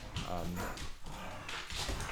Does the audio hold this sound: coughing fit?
no